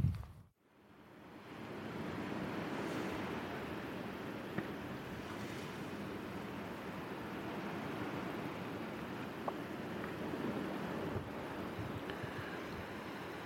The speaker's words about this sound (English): That's the sound in front of me of the waves on Columbus Bay. And I've come now, having spent a bit of time recording a corncrake, to my great joy, I've come down to the very south end of Iona, southeastern point to St. Columbus Bay